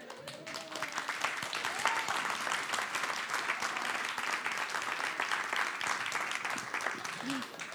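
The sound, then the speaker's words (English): An audience claps steadily, a dense wash of many hands applauding at an even loudness for several seconds, with faint voices and whoops mixed into the crowd noise. “They're just clapping out of sheer joy.”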